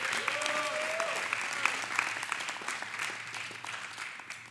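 Sustained audience applause, a dense wash of steady clapping that holds at an even level for several seconds, with a brief whistle-like tone rising near the start.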